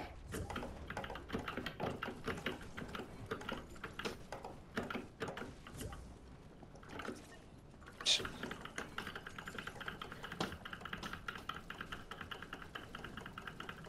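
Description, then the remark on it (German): Rapid, steady clicking of keys on a full-size (100%) computer keyboard, fairly loud, continuing throughout with a brief louder clack midway and a low background hum beneath. “Welche Tastatur hast du eigentlich?”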